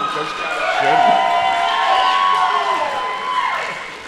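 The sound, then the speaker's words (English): A crowd erupts in applause and cheering, with high whoops and shouts over a steady wash of clapping that holds loud for about four seconds before easing slightly. “And so, then I wrote, pause for applause in the document.”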